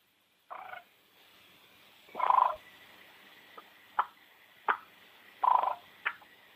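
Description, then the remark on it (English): A hen turkey purr played on an ARO M150 game call, imitating a mother hen gathering her scattered young: a series of soft, rolling trills and short chirps, about seven bursts spaced irregularly, fairly quiet, with no talking. “The old mama hen, she's trying to gather. They've been scattered at a young age, and she'll purr to them like this.”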